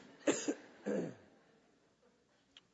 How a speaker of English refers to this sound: I'm going to cough again. I'm sorry about that. Excuse me. That's so attractive, isn't it?